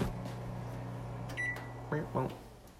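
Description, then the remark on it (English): A microwave oven hums steadily, then gives a short high electronic beep followed by two louder, lower-pitched beeps in quick succession. “Oh, beep.”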